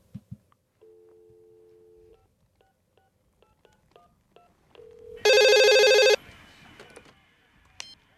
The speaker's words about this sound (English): It's a phone. Yes, it is a phone.